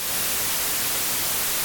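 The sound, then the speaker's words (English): A steady hiss of white noise static fills the whole moment, loud and unbroken, with no voices or other sounds over it. “Editor in Ireland, give us 2 seconds of white noise.”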